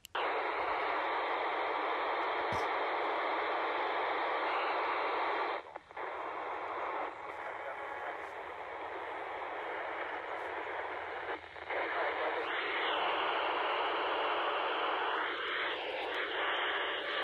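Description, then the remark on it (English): Loud, steady hiss of radio static fills the whole stretch, with a faint, garbled ham radio transmission barely breaking through, most noticeably toward the end. “I think I heard you in there,”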